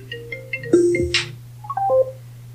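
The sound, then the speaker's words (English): A mobile phone, called through an Alexa 'find my phone' request, rings with a short, bright melody of electronic beeps and chimes, playing over a steady low background hum with no one talking. “Okay, we should hear my phone ring here in a second. Oh, there it goes.”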